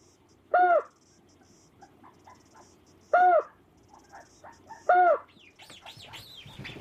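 Calls of adult white-faced storm petrels, broadcast at night by a sound system in a new colony on the southwest cliffs of Mana Island: three loud, harsh seabird calls ring out at uneven intervals over a soft background hiss, followed by a flurry of higher, thinner chirps at the end.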